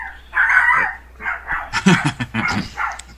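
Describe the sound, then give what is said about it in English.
A dog barks repeatedly in a quick, uneven series of sharp, yappy, loud barks, with no talking over them. “And with that familiar barking?”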